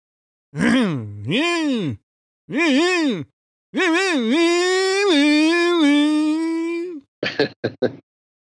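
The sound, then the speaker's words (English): A voice imitates Bob Dylan starting his motorcycle on a cold Minnesota morning: two swooping, sputtering tries, then a long buzzing rev that holds steady before ending in a few quick pops. “And one, Bob Dylan starting his motorcycle on a cold Minnesota morning.”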